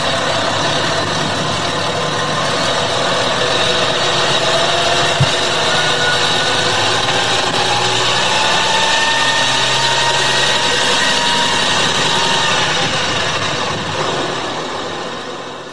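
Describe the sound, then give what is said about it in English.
A large truck engine idles steadily and continuously, a loud, dense rumble with a constant mechanical drone that holds level for the whole stretch before easing slightly at the end. “It's a truck. That's exactly right.”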